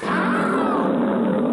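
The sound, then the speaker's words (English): A loud, distorted, magnified lion's roar, almost mixed with a nearly human-sounding cry of pain, heard in the distance. It holds steady for over a second, its layered harmonics wavering slightly in pitch, with a rough growling buzz and no talking. “you hear a distant sound, and it is the sound of a lion's roar, but magnified and distorted, almost mixed with a nearly human-sounding cry of pain that you hear in the distance, but unfortunately, it's not distant enough for your comfort.”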